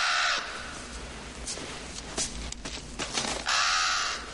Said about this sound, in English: Got all kinds of birds.